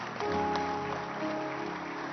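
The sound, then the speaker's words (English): A crowd claps steadily for people being sent to the pastor, in a dense, continuous patter that fills the whole stretch, with sustained musical tones running underneath. “Clap your hands for them. Keep clapping.”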